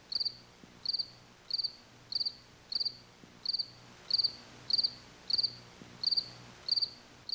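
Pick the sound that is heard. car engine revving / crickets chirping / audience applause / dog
crickets chirping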